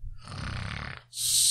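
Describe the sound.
A person does an exaggerated mock snore: a rough, rattling inhale followed by a sharp, airy hiss on the exhale. It's fairly loud, with no other talking.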